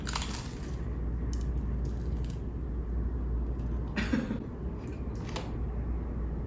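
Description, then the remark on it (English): Someone bites into a crunchy pastry, with several crisp, crackling crunches at irregular moments over a low, steady background hum, and no talking. “Moment of silence for the crunch here in a second.”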